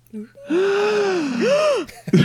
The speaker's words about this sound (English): So much gasping. I'm over gasping.